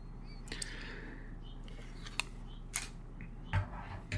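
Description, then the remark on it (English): Faint birds chirp and twitter outdoors, scattered short calls over a low steady background hum, with a few sharp clicks. “I imagine you can hear the birds today. There's a lot going on out there.”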